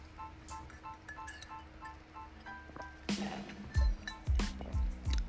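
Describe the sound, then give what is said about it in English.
Someone drinks water from a tumbler bought from Walmart: faint clinks at first, then a series of wet gulps and soft knocks from the cup over the last couple of seconds. “Let me drink some water.”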